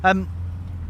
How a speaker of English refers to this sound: Sorry, you can hear that's a bumpy bit of road.